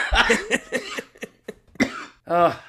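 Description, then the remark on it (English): A burst of harsh coughing after laughing too hard, several rough hacks in quick succession with short gaps, finishing in a longer voiced, throaty sound as the fit winds down. “When I laugh too hard, sometimes I cough.”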